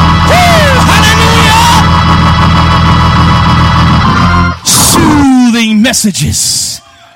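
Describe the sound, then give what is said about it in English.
An audience shouts "glory" and whoops in loud, overlapping exclamations, a dense crowd roar with rising voices, briefly dipping before another burst of yells near the end. “Is there anybody in here that knows that there is a power? Shout glory, somebody.”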